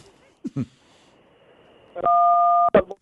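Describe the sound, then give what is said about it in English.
A phone keypad tone, pressed by a caller on a call-in line, sounds once, loud and steady, held for over half a second, following a couple of brief muffled vocal sounds and quiet line noise. “He cannot operate his phone at all.”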